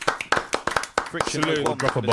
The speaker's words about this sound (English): Salute to the people in the chat. Round of applause for the people in the chat, please.